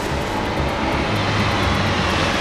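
A helicopter roars steadily and loudly overhead, a dense wash of engine and rotor noise with a deep, droning hum underneath, continuous throughout with no voices.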